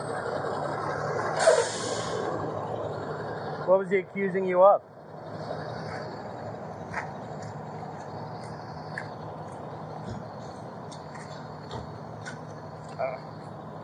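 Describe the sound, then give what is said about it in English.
A heavy truck's engine rumbles steadily, with a short hiss of air brakes and a louder clattering burst, while people talk over the noise. “That truck's going to be really loud.”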